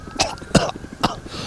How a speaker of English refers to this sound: I waste my monologue time on coughing.